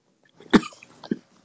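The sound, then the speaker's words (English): Two sharp coughs: a loud, forceful one followed about half a second later by a shorter, softer one, with no talking. “Sorry, here you are coughing.”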